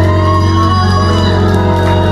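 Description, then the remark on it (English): A church audience cheers and yells in a loud, continuous wash of voices as married women make noise to praise God at the preacher's urging, with steady sustained tones running underneath throughout. “I heard too many yell.”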